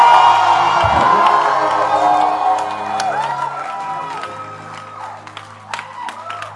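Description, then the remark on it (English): A large church audience screams and cheers together in a loud, sustained roar of overlapping voices and shouts, with whoops rising above the crowd before the noise slowly tapers off. “Can I get somebody to scream?”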